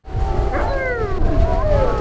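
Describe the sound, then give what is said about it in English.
Several wolves howl together in overlapping, wavering tones that rise and fall, with a low rumbling background underneath; fairly loud, no talking. The wolves are at a wolf ranch in Palmdale, in the Antelope Valley north of Los Angeles. “Right now, there are 33 wolves at the Wolf Connection Ranch in Palmdale.”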